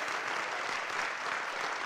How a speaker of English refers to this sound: Waldorf, can we stand to our feet and give Jesus a loud round of applause? Give God some praise.